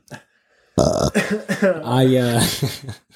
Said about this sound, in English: Sorry. I just want to burp, and I said